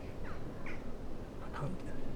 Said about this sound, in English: Something's really got the jackdaws, crows and magpies excited here.